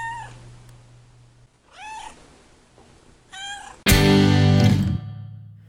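A cat meows three times in a row, drawn-out and clear, followed by a sudden loud, harsh burst of processed sound.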